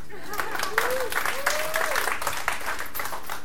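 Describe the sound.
A church audience breaks into steady, dense applause for a woman called up to the front, holding for several seconds, with a couple of brief voiced calls rising above the clapping.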